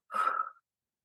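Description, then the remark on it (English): A single short, airy breath, part of calming breathing in for a count of 4 and out for 6, lasting about half a second before fading into silence, with no talking around it. “So what I like to do is I breathe in for 4, out for 6.”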